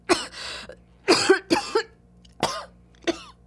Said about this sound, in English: Coughing, so sudden and painful that it turns into gagging. Shh, baby, stop. I can taste it. Dirt in my mouth.